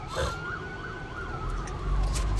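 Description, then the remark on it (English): An ambulance siren wails in a rapid rising-and-falling pattern over a steady low rumble of passing traffic, with no one speaking. “Got an ambulance.”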